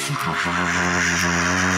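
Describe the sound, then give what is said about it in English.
A voice mimics a passing car with a steady, buzzing engine drone that swells slightly and holds for under two seconds, loud. “If a car goes by, you'll hear a...”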